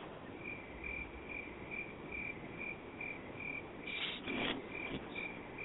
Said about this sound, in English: Yes, ladies and gentlemen, those are crickets, because how in the world do you guys get to the end of the game and let that happen?